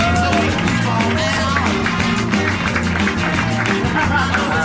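Lukewarm applause from a crowd as a guest is brought up on stage, a steady wash of scattered claps that never swells, with murmuring voices and a low droning hum underneath throughout.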